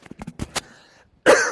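A few short, breathy coughs sputter out from a person wearing a head-mounted microphone, then a brief pause before a louder, harsher cough bursts in at the end.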